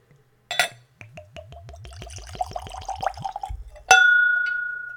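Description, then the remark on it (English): A quick clink of glass, then neat whiskey at room temperature glugs rhythmically from the bottle into a clean Glencairn whiskey nosing glass, the pitch rising as it fills, ending with a bright, sustained crystal ring that slowly fades. Clear, no talking. “So let's go for a pour.”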